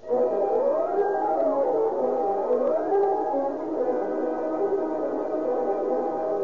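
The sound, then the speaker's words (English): A police car siren wails steadily as the car careens out of a driveway, its pitch slowly rising and falling in long sweeps, loud and continuous for the whole stretch with no voices over it. “And within 30 seconds, a police car bearing Deputy Sheriff Harry Brewster and Jack Stoutard, investigator for the District Attorney's Office, has careened out of the driveway”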